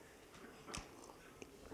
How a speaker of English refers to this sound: Let me tell you. After I have a sip of this great coffee.